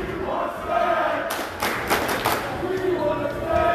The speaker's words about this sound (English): Oh, they're clapping.